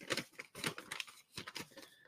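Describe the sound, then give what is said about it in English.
Paper rustling and crinkling as a small sheet is handled and folded over to show getting from point A to point B, in several short, crisp bursts, fairly quiet, with no talking. “If you take a piece of paper and fold it over, because you're trying to get from point A to point B, right?”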